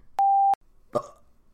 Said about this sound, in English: Burp.